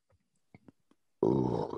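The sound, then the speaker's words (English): A single loud, voiced sneeze bursts out after a few faint breathy sounds and lasts about half a second. “Bless you.”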